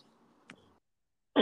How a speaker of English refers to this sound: Both of us out here coughing. Sorry, y'all.